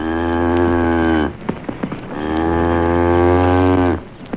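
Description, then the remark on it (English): Two long, loud cow moos, pitched up so they sound unnaturally high and buzzy, each held steady for over a second with a brief crackling pause between them. “The cow's taking off into orbit.”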